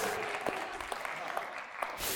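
An audience claps steadily for a couple of seconds, a dense, even wash of many hands with a few sharper claps poking through, applauding the reveal of Agatha Christie in first place as best-selling novelist.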